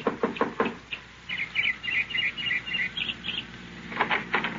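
Knocking on the door of a small house in the evening: a quick burst of about five sharp raps, then birds chirping outside during a pause, followed by another short round of knocks.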